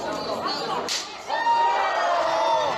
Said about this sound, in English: Two men stand across a small table from each other and take turns slapping the other man as hard as they can in the face. They're not allowed to block or duck. First slap was by a 350-pound MMA fighter.